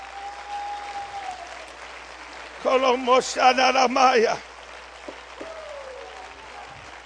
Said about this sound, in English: I wish we clap our hands right now.